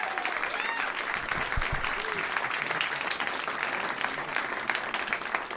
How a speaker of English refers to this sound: So how about a round of applause for our guest of honor, Mr. Walt Disney.